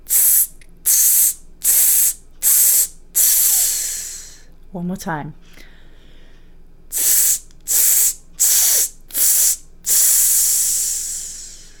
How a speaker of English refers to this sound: So now you're going to aim for 5 just nice consistent hiss bursts. So breathing in and all in one breath.